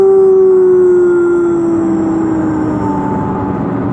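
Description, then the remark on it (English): A person imitates a wolf with one long, loud howl, holding a steady tone that slowly slides downward over several seconds, with no talking alongside it. “bring some full moon growl.”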